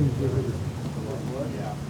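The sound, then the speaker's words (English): A low, continuous rumble of thunder rolls steadily through the whole moment, with a soft rain-like hiss and a faint humming tone layered over the deep growl. “Do we have lightning?”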